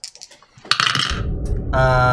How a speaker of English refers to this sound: The dice not with you today? No, a 10 and an 8